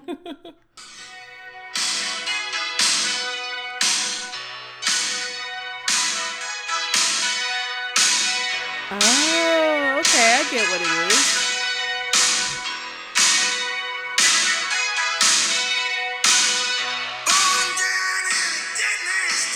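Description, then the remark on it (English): A song with loud, booming drum hits in a steady beat, each swelling with echo and then cutting off abruptly, the gated reverb effect. Sustained music and a brief voice sit beneath the hits. “Yeah, it's like a, just basically like a really loud, echoey drum sound, but it ends very abruptly. And that's gated reverb.”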